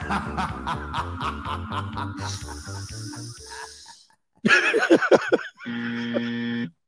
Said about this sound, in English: I didn't really sniff that, did I? I did sniff. I'll sniff.